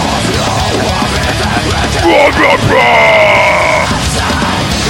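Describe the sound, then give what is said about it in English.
A bald man in a music video lets out a long, loud yell over dense, noisy music, his voice rising and holding strained sustained notes for a couple of seconds. “Come on, bald dude. Yell.”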